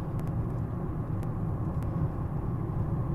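Steady low-frequency road rumble and engine drone fill a car cabin while driving, with a few faint brief clicks over the constant hum and no one speaking.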